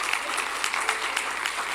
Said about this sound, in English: Am I speaking to anybody? You're all clapping up front, but back there, you're all like out in the daze.